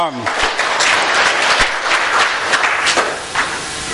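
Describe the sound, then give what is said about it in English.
Scattered, half-hearted clapping from an audience, a thin patter of a few hands that stays fairly steady for about four seconds with occasional sharper claps poking through. “That almost sounded like a pity laugh. Okay, or a pity clap, I mean.”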